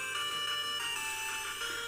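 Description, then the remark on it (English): The first-season theme song of the anime Jujutsu Kaisen plays through a phone speaker, thin and tinny, with steady bright melodic tones at a modest level and no voices over it. “Ah, yes, it's a theme song for something. So familiar. Yes, it's for Jujutsu Kaisen, the first season.”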